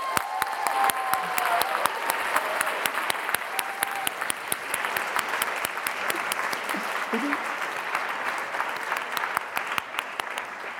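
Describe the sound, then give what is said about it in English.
Sustained, loud applause from a large audience at a Friday-night literary event welcoming author Maggie O'Farrell, dense and steady for about eleven seconds, with a few high whoops and cheers rising above the clapping near the start. “There was definite whooping.”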